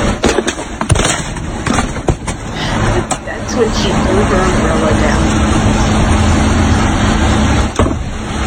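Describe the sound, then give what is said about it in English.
A steady road-traffic rumble fills the background, broken by a few sharp knocks early on, then a single solid thud of a door closing just before the end. “That was the door closing there at the end.”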